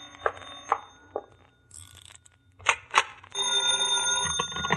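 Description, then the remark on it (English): A telephone bell rings, loud and metallic, with a couple of short bursts before a long continuous ring that runs to the end. “Answer that phone, will you?”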